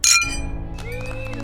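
Glasses clink together in a toast: one bright, sharp clink that rings on, followed by a cluster of softer clinks and chimes over a low background rumble.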